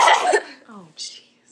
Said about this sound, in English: You aren't gonna cough in their ears this time? I mean, I could. No, no.